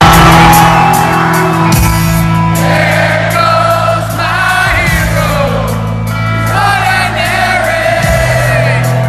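A large concert crowd sings along loudly in unison while the band's singers stay silent, their massed voices rising and falling with the melody over steady, booming band music, with no pauses.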